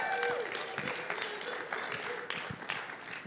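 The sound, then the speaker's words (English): A group applauds a young woman who led worship at camp, with steady, dense clapping that holds at an even loudness for a few seconds, broad and noisy, with a few brief voices mixed in. “Everybody clap for her.”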